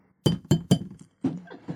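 A brown glass Reviver Red IPA beer bottle, being sorted for recycling, clinks: three quick, bright knocks in a row, a short pause, then a couple of softer, duller taps as it settles. No one speaks.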